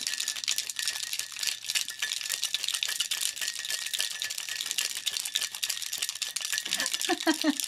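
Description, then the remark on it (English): A cocktail shaker holding ice and a Christmas cocktail with cranberry juice, cinnamon and bitters rattles in a fast, steady churn of bright clattering hits that runs without a break, and a voice begins to hum a short tune near the end. “And let's shake, shake, shake, do do do do do.”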